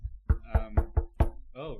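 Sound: knocking on a door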